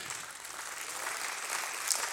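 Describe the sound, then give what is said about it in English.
Light, scattered clapping from an audience, a thin steady patter of hands with no strong rhythm, fairly soft throughout. “The claps are kind of patty caking”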